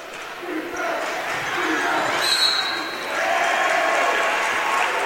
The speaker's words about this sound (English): And we have a whistle and a foul.